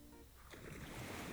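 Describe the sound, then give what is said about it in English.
A low engine drone from a departing ferry gives way to a broad, rushing wash of water as waves churn and lap against the shore with a steady, fairly loud surge. “your reverie is disturbed by the departure of the ferry.”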